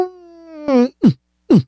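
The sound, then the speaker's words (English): A voice imitates a whale's mating call: a long, steady mid-pitched moan swells into a louder warbling cry, followed by two short, loud swoops that slide downward in pitch. “I'm doing my impression of a whale having sex.”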